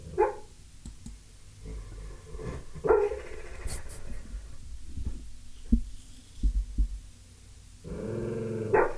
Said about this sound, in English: O'Neill's having a dream. Listen to that. Oh my God, it's so cute. He's doing the little dog. He's doing doggy yelp.